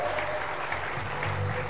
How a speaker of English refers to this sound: You may clap your hands first.